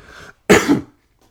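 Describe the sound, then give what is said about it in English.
A single harsh cough bursts out, preceded by a brief soft exhale or throat noise, then silence; no talking around it. “Coughing again.”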